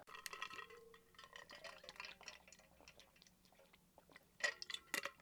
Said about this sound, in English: Pardon my quick water break.